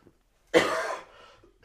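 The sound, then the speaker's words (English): A single sharp cough to clear residual stuff from the throat, fairly loud, with a rough breathy tail trailing off afterward; no talking. “I do have a little bit residual stuff, so let me try to cough that away.”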